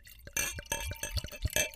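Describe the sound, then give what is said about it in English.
Wine glugs and splashes from a bottle into a glass, a bubbly, gurgling pour with rising pitch as the glass fills, heard on its own without talking. “All right, pour some of that in that glass.”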